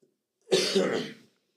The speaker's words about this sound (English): In brief, excuse me, I got this cough.